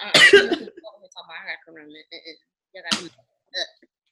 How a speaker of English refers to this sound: Go ahead and get up off camera and cough